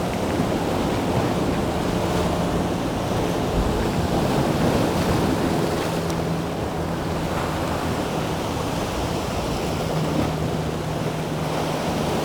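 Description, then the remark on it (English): Sea water surges and churns through a deep rocky channel called a cauldron, about 10 metres deep, filling right up to the brim in a steady, loud roar of surf, with wind buffeting the microphone and no voices throughout. “so much water moves around. I mean, it's like 10 metres more deep and then it just fills right up to the brim.”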